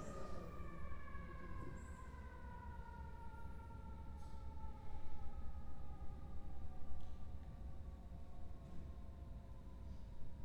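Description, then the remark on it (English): A fire engine siren wails steadily outside, its harmonic tones slowly sliding downward as it passes, over a loud rumbling engine and traffic noise, with no one speaking. “Take 5 seconds and pray for wherever that fire engine is going.”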